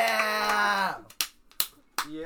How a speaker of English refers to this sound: Yeah, I was the only one clapping for a couple seconds.